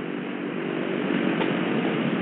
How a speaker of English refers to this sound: Number four. And so on until all four engines have been run up and checked.